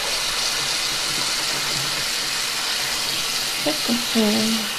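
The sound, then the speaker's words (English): Water pours steadily from a sink faucet, a constant hiss filling the whole stretch, with a brief voice murmuring faintly underneath near the end. “Sorry for the water.”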